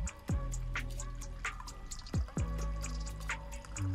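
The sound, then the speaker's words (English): Coffee pours steadily into a cup, a continuous liquid stream broken by a few gulping splashes, with no one talking. “Let's pour this coffee in here.”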